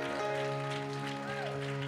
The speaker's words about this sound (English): Will you give Jesus a great hand clap of praise?